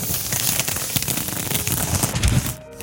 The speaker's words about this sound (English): Here I am unrolling 350 yards of carpenter's paper.